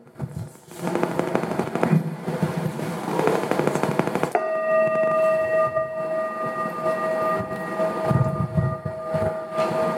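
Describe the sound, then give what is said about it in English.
A meditation bell is struck once to begin a Zen sitting meditation, ringing with a steady, clear, mid-pitched tone and shimmering overtones that sustain for several seconds, following a stretch of rough, rattling noise. “The bell really says everything that we need to know about Zen. It is a pleasing sound that calls us to attention and teaches nothing.”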